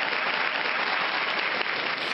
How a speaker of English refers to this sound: Big ups to you. Big applause.